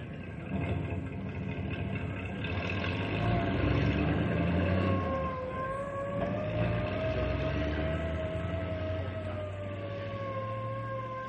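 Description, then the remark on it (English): A car engine rumbles steadily as the car pulls away from the jail, its whine rising slightly in pitch over a broad mechanical roar that holds at a fairly constant loudness. No one speaks. “Everybody stays here until the car leaves.”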